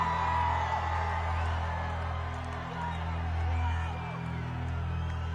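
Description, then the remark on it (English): A concert crowd cheers in a loud, sustained roar at an announcement of a message from Donald Trump, the 45th president of the United States, with scattered whoops and shouts rising over a dense wash of voices and a steady low hum throughout. “And the crowd just eats it right there.”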